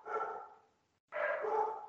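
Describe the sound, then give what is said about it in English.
A dog barks twice, loud, each bark drawn out with a harsh, tonal quality and a short pause between them. No one speaks. “And the dog greets.”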